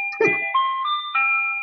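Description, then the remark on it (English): An ice cream truck's tinny electronic jingle plays a few sustained, stepping notes after a brief rustling burst, steady in loudness, with no voices. “Are you jumping in front of the truck?”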